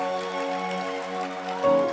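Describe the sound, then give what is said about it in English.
A dense, steady patter of many hands clapping together at a church service, continuous for the whole stretch, with sustained musical tones running underneath and a brief swell near the end. “I think you can clap for the Lord and do better than that.”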